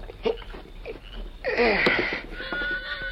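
A horse named Victor, left out front, lets out a loud, shaky whinny that starts high and slides downward for about a second, trailing into a softer breathy tail, after a stretch of faint, indistinct sounds.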